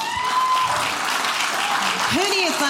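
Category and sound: crowd, audience clapping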